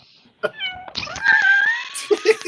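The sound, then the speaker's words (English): A person mimics a cat begging, stretching out a whiny, wavering meow, followed by a couple of short, clipped mewing sounds. “the cat is like, come on, give it to me, please. He's a meow.”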